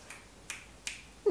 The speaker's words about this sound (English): that is Pomeroy coming in. He's just been outside. Do you hear the cat flap?